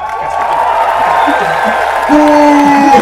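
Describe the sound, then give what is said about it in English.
A crowd cheers and claps for the festival mages in a contest where a judge picks the round winner by the loudest cheer. The cheering is a steady, dense wash of noise, with sustained whoops and shouts rising above it and growing a little louder near the end. “And a cheer for our festival mages.”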